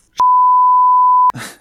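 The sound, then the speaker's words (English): A single loud, steady censor bleep holds one flat pitch for about a second, then cuts off abruptly as a voice resumes talking. “You've got to beep that all out now.”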